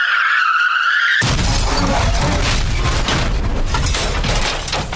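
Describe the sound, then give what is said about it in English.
A brief high tire screech cuts abruptly into a loud, sustained car crash, with crunching metal and scattering debris rumbling for several seconds. No voices are heard. “Hit the car crash, Scotty.”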